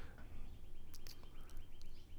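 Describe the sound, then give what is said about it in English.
Faint birds chirping: a handful of quick, high-pitched chirps scattered irregularly over a steady low rumble, with a soft repeating tweet running underneath. “Those are birds.”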